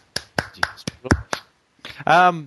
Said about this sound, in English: I was clapping. I'm happy.